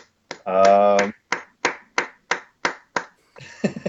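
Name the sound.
hand clapping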